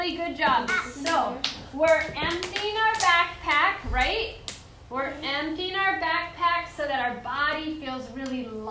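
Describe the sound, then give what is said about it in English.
Children, having lifted their heads and feet, clap their hands in a quick, uneven flurry of sharp claps during the first half, mixed in with young voices talking that continue after the clapping stops. “And then lift your head up and lift your feet up and clap because everybody's doing such a good job emptying their mind.”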